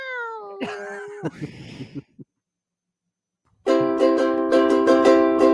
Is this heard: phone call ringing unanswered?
no